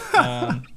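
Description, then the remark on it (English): A single short throat clearing, a gravelly voiced rasp that rises and falls in two quick pulses, then trails off into quiet. “Clear your throat.”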